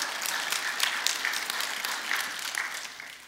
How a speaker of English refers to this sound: That deserves a clap. All right. There you go.